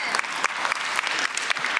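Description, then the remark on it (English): A crowd claps steadily, dense overlapping hand claps forming a bright, sustained burst of applause with no voices standing out. “But just know that, somebody was going to clap.”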